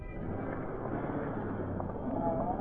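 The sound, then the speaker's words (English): Roger's car drives away, its engine rumbling with a low, droning hum under a broad, rushing hiss. The sound stays at a fairly even level for a few seconds, with no voices. “When the sound of Roger's departing car had faded, he let himself out the door, plunged into the underbrush, and ran out onto a back road, heading for the place where he'd arranged to meet Cato and Commissioner Higgins.”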